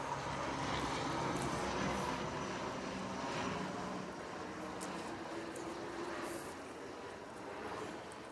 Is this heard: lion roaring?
no